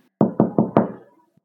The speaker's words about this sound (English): Then, miracle of miracles, there is a knock on the door.